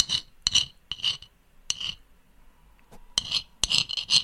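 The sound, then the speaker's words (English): A rat scratching at a front door in the early hours: irregular bursts of sharp, dry rasping, some quick pairs, with brief pauses between and a longer lull midway, fairly faint, with no voices. “he literally heard a rat scratching at his door”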